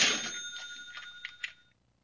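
A cash register rings with a bright bell ding over a rattle of mechanical clicks, loud, then the tone fades out within about a second and a half.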